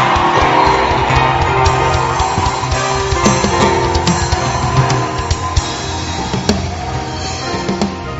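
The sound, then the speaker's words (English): An audience at a church service claps for Jesus and shouts to the Lord together, a loud, steady wash of applause with scattered whoops and cheers rising over it throughout, no single voice standing out. “If you believe it, clap your hands for Jesus and give the Lord a shout.”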